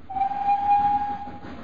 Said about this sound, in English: And so I caught the train into Kilchester to call at the offices of Breather and Scuttle, the estate agents where James Bentley had once worked.